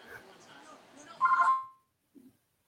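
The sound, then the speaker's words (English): A phone gives a short, bright electronic ring, one loud warbling burst, after low murmuring voices; a faint soft knock follows before silence. “My phone will not stop ringing tonight.”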